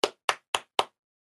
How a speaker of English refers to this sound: starts clapping.